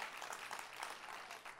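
A church audience claps together to thank God during a sermon, a steady, dense burst of applause, many hands overlapping into a continuous loud patter with no clear individual beats.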